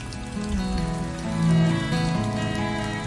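Heavy rain pours steadily onto a dirt road, forming swollen puddles that turn the road to mud; a dense continuous hiss and patter that holds fairly loud for the whole stretch, swelling briefly in the middle, with tonal hum beneath it.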